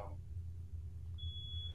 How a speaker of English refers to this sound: I guess someone set off the fire alarms.